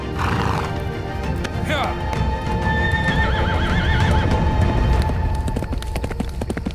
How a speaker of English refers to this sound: watched as his horse rode off into the distance.